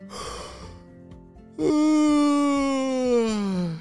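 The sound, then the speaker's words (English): A narrator imitates a sleepy yawn: a breathy intake of air, a brief pause, then a long, loud, drawn-out groan that slowly slides downward in pitch. “Stretched and yawned and fell asleep.”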